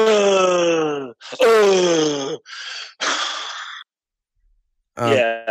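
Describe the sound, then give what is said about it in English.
A voice imitates kids' exasperated heavy breathing: two drawn-out groaning sighs, then two loud breathy huffs, a pause, and a final short groan starting up, unaccompanied by words. “They do that heavy breathing thing.”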